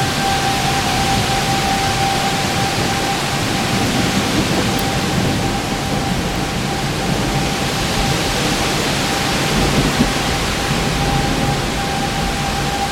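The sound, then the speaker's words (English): A heavy rain and wind storm, recorded by someone standing outdoors in it, roars steadily for the whole stretch, a dense hiss over a deep, gusting rumble, with a faint constant tone running underneath and no voices. The thunder is barely audible under the wind, and sirens wail throughout. “And then see, here comes the wind again. And you can barely hear the thunder at this point.”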